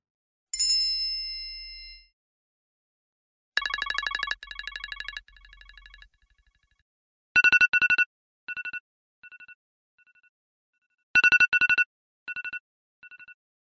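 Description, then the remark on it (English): Three iPhone alarm tones play one after another: Chimes, a bright descending chime; then Beacon, a pulsing beeping pattern; then Radar, rapid repeated high-pitched bursts in short, sharp clusters with gaps between. “Now, the bottom three are chimes, beacon, and radar. These are awful.”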